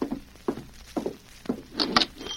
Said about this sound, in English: Me in general store, cross from bank. Have supplies and arm. And start to leave. Storekeeper open door for me to go out.